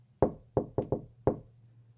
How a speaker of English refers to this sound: We walk all the way to Miss Rembrandt's door, her office door. And we each knock in harmony on the door.